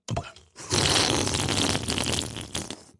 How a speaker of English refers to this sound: Get a little bit of a sip of this rosé before we start talking about fucking politics.